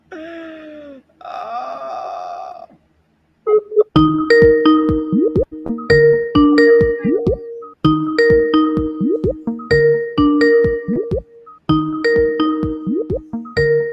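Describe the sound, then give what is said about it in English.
A brief moaning, wailing vocal sound gives way to a phone ringing on the line, a loud, steady, repeating ring pattern that cycles about five times at a regular pace. “We haven't called him yet and tell him how much we miss him.”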